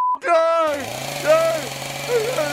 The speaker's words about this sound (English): Chainsaw now. I'm going to chainsaw it out. I'm going to chainsaw it. No, you do not have a chainsaw. Oh, my God. I do, too, have a chainsaw. Listen. I'm going to chainsaw this stupid thing right out.